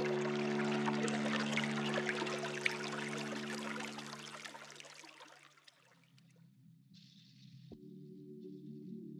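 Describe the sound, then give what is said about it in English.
Water pours and trickles steadily for several seconds, a bright splashing hiss over a low steady hum, then thins to a quieter trickle with a faint high shimmer near the end. “As long as you hear the water, keep it in your hands.”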